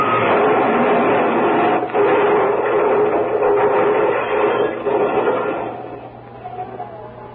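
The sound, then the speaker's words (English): A loud, steady rushing roar of a plane that has lurched sharply and is descending much too fast, with a low droning hum beneath and faint rattles, holding strong before gradually fading over the final seconds. No voices. “There was a loud rushing sound in my ears, and I realized that we were coming down.”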